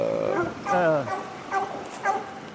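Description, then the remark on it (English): A pack of bear-hunting hounds, 24 dogs in two or three packs, barks and bays in overlapping, drawn-out cries, several voices calling at once in an uneven, continuous chorus. “That's a bear dog pack. That's two or three packs, ain't it?”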